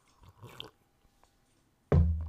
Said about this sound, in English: I mean, think about that for a second while I take a sip of my coffee.